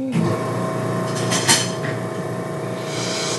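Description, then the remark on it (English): A medical machine switches on and runs with a loud, steady mechanical roar over a low hum, with one brief clunk partway through and no talking. “I'm going to hear this machine turn on now. Okay, it makes a loud noise.”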